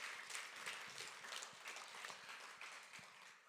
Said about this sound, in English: Put your hands together for your two associate pastors.